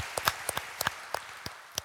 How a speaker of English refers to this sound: And, you know, I just want to thank you guys for your leadership and your time here in our church. And can you guys join me in giving a round of applause for these young adults?